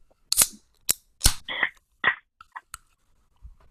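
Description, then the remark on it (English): A can of Polar Seltzer from a variety pack being cracked open: a run of sharp metallic clicks and snaps from the tab, followed by short bursts of fizzy hiss and a few faint ticks, with no talking. “All right, let's crack it open.”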